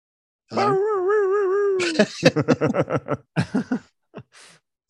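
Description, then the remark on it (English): A person does a dog impression: a long wavering whine, then a quick run of rhythmic yips and barks, a short pause, and a few more. “I did acting like a dog gets you no extra points.”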